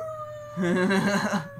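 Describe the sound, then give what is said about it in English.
A person gives a short mock wolf howl, a wavering, warbling vocal cry lasting about a second, fairly loud, over a faint steady background tone. “I should have ended with a giant wolf howl.”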